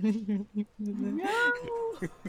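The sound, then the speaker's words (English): A person talks briefly, then a single drawn-out cat meow rises and falls in pitch, clear before it fades out. “The guy's just like, meow.”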